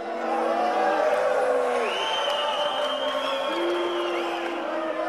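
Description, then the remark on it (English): A large concert audience in a concert hall jeers, hisses and boos at the end of a live performance in a dense, continuous roar, with shrill whistles and drawn-out yells rising and falling over the steady noise of the crowd. “Beginning with one overexcited soul, but spreading almost instantly to all corners of the room, damning jeers, hisses, and boos.”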